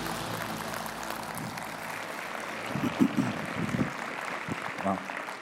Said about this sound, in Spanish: Un aplauso al Señor por ello.